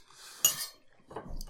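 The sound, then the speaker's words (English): Cutlery clinking against a plate while cheese is being eaten: one sharp, ringing metallic clink, then a short pause and softer scraping and tapping. No one speaks. “And I will just say, we're eating cheese this episode.”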